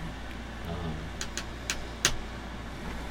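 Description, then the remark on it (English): A steady, low air conditioning roar in a booth hums continuously at a soft level, with a few faint sharp clicks scattered over it and no one talking. “It's a little toasty up here in the booth, so I've got the air conditioning going. So if you hear a little bit of a roar”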